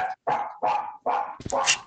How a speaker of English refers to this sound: And there's the dog. Do you guys hear that? It's fine. It's completely fine. That's my little yipper. She's a Yorkie poo.